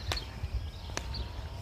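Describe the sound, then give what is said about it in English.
Footsteps crunch along a country road at an unhurried pace, three distinct steps about a second apart over a low, steady outdoor rumble. No one speaks. “I'm walking down the road and I'm trying to avoid a lot of cow poop.”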